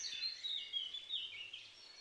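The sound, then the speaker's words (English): Outdoor woodland atmosphere filled with bright, high birdsong: several birds chirp and trill continuously over a soft, steady background hush, fairly quiet and without any voices. “And then a forest.”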